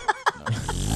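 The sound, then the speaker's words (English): A voice blows a wet, buzzy raspberry imitating a fart: two short vocal bursts, then a sustained low sputter that swells louder over about a second. “What about just a fart noise?”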